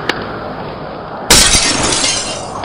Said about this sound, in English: He doesn't just break the glass in the window, he pushes it out to litter the people's yard!